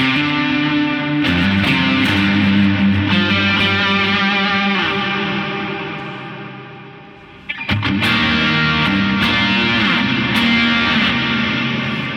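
A crunchy overdriven electric guitar, with more highs dialed back into a Sonder, plays sustained chords with bright, crisp highs, fading out near the middle before a fresh strum kicks back in loud, with no talking.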